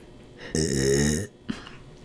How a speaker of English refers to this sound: I have to burp again. What the hell?